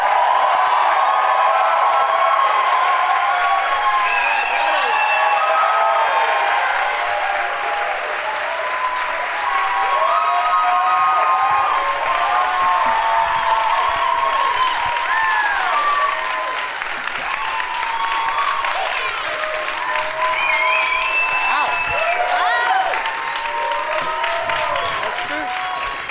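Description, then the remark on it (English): A large audience at a live show applauds steadily for almost half a minute as guests Sam Roberts, Ron Bennington, Esther Koo and Jim Norton are welcomed, a dense wash of clapping laced with whoops, shouts and high-pitched cheers that stays loud throughout. “As are my guests, all East Coasters currently, please give a big warm welcome to Sam Roberts, Ron Bennington, Esther Koo, and Jim Norton.”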